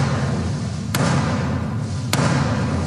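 impact, knocking on a door

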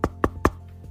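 impact, knocking on a door

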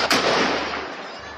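impact, gunfire

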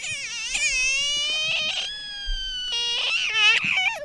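animal, frog screaming

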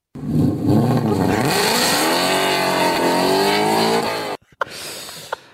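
vehicle, car engine revving

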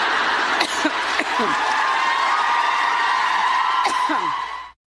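crowd, audience cheering

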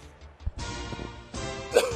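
human body sound, cough

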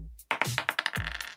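dice being rolled

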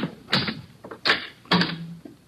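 household object, front door being opened

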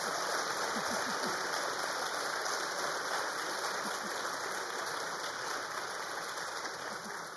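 crowd, audience applause

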